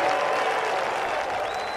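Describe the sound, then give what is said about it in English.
A golf crowd erupts in a standing ovation after a great shot lands on the green with backspin: sustained, dense applause, a steady roar of clapping that stays loud and even throughout with no voices standing out. “My, the crowd go nuts, standing ovation.”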